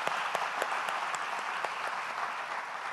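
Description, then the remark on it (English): A crowd claps steadily and warmly for families at a baby dedication, a dense wash of many hands with sharper individual claps popping through, at an even level throughout. “Can we just give a round of applause to these families one more time?”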